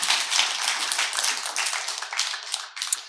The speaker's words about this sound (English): Thank you so much. Let's clap for her one more time.